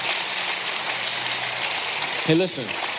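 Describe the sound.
A steady, dense wash of crowd applause, crackly and continuous throughout, with a short voiced shout or call rising over it near the end.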